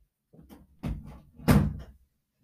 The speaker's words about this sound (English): 1 second, I have to close the door, but I don't want to pause it.